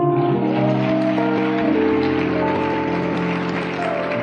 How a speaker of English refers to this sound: Clap for Bishop Dag.